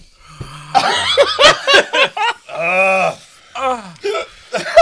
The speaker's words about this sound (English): Oh shit, you got the hiccups.